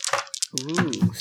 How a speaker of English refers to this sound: all right, let's roll the skull dice this time.